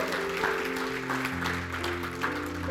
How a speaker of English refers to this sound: Let's give the Lord a round of applause.